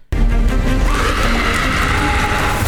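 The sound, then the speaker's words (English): A powerful, piercing scream erupts suddenly and holds, layered over a loud rumbling crash of collapsing stone, the whole blast sustained and close for a few seconds. “And there was then there's the whole, remember how she can do that scream thing and it knocked over this like obelisk or part of a wall or something?”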